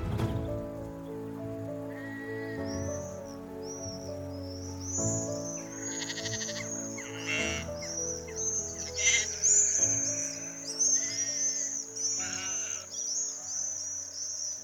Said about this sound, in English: As you can probably hear in the background, we're surrounded by sheep and swifts, and it's a very still, warm evening in the middle of June.